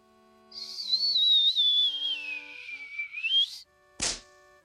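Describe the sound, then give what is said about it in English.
A long, high whistle of air escaping a blown, roughly head-sized bubble releasing like an untied balloon, drifting slowly downward in pitch for about three seconds, then cutting off before a short, sharp burst as the bubble hits the grass and explodes. “It was perhaps as large as Link's head, and when he stopped blowing, it whistled and released like an untied balloon with precision.”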